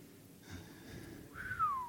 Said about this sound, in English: No, I'm whistling.